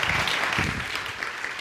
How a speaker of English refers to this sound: Give him a round of applause as we worship together.